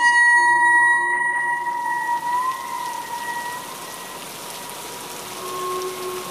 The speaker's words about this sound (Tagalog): Bumuhos ang malakas na ulan.